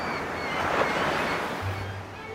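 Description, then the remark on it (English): Steady ocean surf rushes and washes ashore, a broad hissing roar that swells slightly midway, with a low rumble underneath and no voices present. “Yep, and sometimes those waves have come from a long way away to crash at your beach.”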